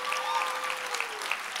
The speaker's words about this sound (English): Come on, you better clap like God already did it.